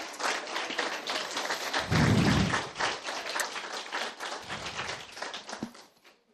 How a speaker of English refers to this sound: Now you may give them a hearty tetelestai applause. You can stand up if you want so people can see you if you're comfortable.